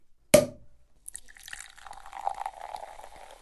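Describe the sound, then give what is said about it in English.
A single sharp, loud snap, a brief pause, then champagne pouring steadily into a glass with a fizzy, crackling hiss that builds over a few seconds. No one speaks. “We've got some scientific advice on how to get the most bang out of your bubbly.”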